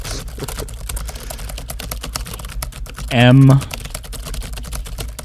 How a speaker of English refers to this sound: I'm typing. There I go. Typing. This all seems real.